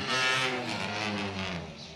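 Several race car engines drone together as the cars start to roll when the green flag flies for a 15-minute session at a circuit, a steady, fairly loud roar with pitches gently rising and shifting, and no talking over it.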